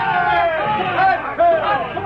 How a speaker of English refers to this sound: The crowd, sensing victory, gave a long, sustained shout of triumph.